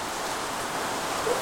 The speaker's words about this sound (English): Hey, man, listen to this flaming rain.